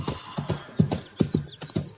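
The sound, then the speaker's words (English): Horse hooves clip-clop in a steady, uneven rhythm, about a dozen sharp knocks over a couple of seconds, with no talking. “I just don't trust that horse.”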